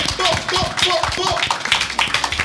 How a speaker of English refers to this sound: Everybody give a round of applause for this esteemed panel that we have up here.